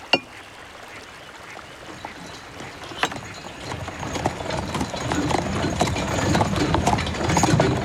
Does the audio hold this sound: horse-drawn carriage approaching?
yes